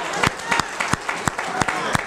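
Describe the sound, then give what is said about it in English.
Steady hand clapping, about eight sharp, evenly spaced, moderately loud claps over a murmuring background. “I'm going to clap for that myself.”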